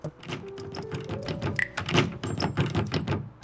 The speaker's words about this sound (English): Those clicks that you heard, those rapid clicks, were doors. There's actually a door off to my right, and there's a door below that as well.